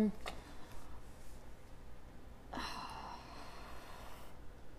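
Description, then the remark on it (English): Soft breathing from a person thinking over a question fills a quiet pause, with a couple of audible inhales and exhales and a faint rustle, no words spoken. “People are just listening to your breathing now.”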